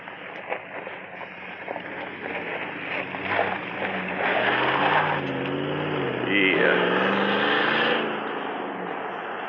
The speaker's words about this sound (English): Well, there's no cars here anyway, so. Well, one car, two cars.